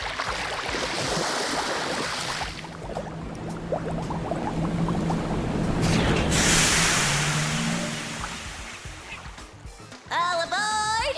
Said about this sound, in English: Is that a tiny submarine that just pulled up and a small person about your age that just welcomed us aboard?